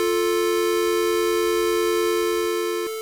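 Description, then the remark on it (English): An American dial tone played as a square wave: a steady, harsh, buzzy hum with a bright, reedy edge, holding unchanged for about three seconds before cutting off with a click. “Here is a American dial tone as a square wave instead of a sine wave.”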